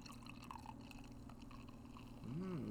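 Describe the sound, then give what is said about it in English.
Pink, hazy beer pours steadily into a glass, a continuous splashing, gurgling stream lasting a few seconds, with a brief voiced sound rising over it near the end. “Nice pour.”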